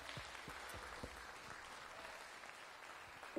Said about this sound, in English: So home folks, can we give all of our guests a hand clap of welcome this morning?